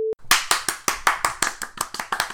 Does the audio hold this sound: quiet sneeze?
no